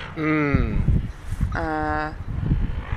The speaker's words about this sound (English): Much like our friends the seagulls, you can hear. Having a bit of a battle for seaweed.